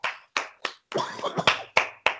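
A short round of applause: a few sharp, loud hand claps spaced apart, then a denser cluster of overlapping claps with a faint voice mixed in, ending with three more distinct claps.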